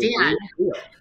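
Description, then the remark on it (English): Several members of a company team howl and yip like a wolf pack in two short, overlapping bursts, fairly loud, with the second cry fading out quickly. “And, you know, you can think it's corny with all the howling, but it's real.”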